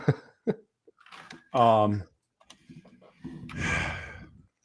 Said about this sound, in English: I'm going to let you pick first here because I do need to cough really quick.